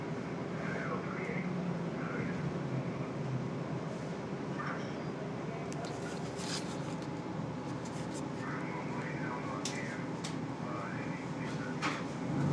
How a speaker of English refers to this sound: Hear those CB sounds.